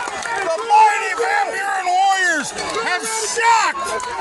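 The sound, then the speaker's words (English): A crowd cheering wildly at a baseball game, a loud, sustained roar of overlapping voices with whoops and yells swooping up and down in pitch throughout. “The crowd goes nuts.”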